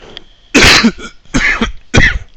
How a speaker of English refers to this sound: And I'll explain all the coughing.